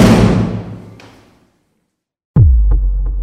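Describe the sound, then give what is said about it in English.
A door bangs hard against a wall: a broad rush fades into a moment of silence, then a sudden heavy, booming slam rings out with a low resonant thud and a few small rattles. “The two hugged, but it was short-lived as the door swung open and slammed against the wall.”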